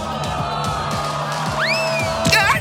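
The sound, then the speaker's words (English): An angry crowd at a DJ's set shouts and yells in a steady, dense roar, with a couple of rising whoop-like cries cutting through toward the end, loud throughout. “Zara, did your DJ class teach you what to do with an angry crowd?”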